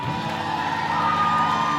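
A crowd cheers and applauds for a pastor in a loud, steady roar of voices and clapping that holds for about two seconds without letting up, with no one speaking over it.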